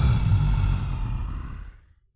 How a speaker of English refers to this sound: Then you hear a roar.